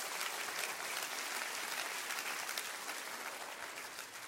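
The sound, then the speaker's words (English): An audience claps hands together, a dense, steady wash of many overlapping claps that holds strong throughout and eases slightly toward the end, with no talking over it. “Clap your hands one more time before I preach a little more.”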